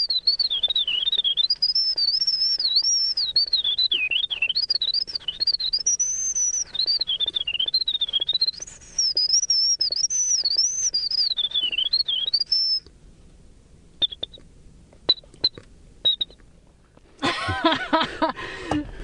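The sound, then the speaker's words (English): A man whistles a long, rapid, warbling imitation of a winter wren's song, a continuous high trilling line that sweeps up and down for about thirteen seconds, followed by a few short chirps and a brief noisy burst. “The most complex song he whistles is that of the winter wren, which took him over 6 months to perfect.”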